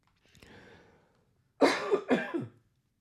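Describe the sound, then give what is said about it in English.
A faint breath is followed by two loud, harsh coughs in quick succession, with no talking. “Well, I got through most of this without coughing.”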